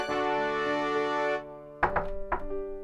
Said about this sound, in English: I hear somebody knocking.